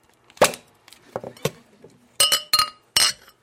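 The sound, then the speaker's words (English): A glass bottle of plain apple juice is handled and opened with a few soft knocks and clatters, then three bright, ringing glass clinks follow in quick succession, with no talking. “I'll open the bottle.”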